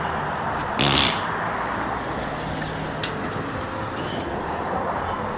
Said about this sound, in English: Living the life, living this Baltimore life, man. Watch the cars drive past and shit, man.